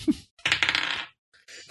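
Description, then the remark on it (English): Dice clatter across a table during a tabletop role-playing game in a bright, rattling burst of quick hard clicks, then fall quiet before a short second rattle as they settle. “I rolled lower than last”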